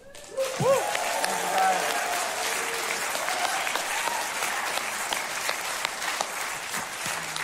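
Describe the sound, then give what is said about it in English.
An audience at a church claps and cheers for the founding members in a steady, dense wash of applause that holds at full strength throughout, with crowd voices mixed in and a rising whoop or whistle near the start. “Yeah, let's just give it up for him one more time. And one more time, let's just cheer for the founding members.”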